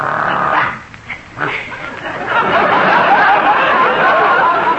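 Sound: dog barking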